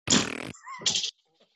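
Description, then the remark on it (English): A small Co-op indoor firework sputters with a raspy, fart-like noise in two short bursts, the first longer and rougher, followed by a brief whistle and a few faint crackles. “It was like a fart, wasn't it?”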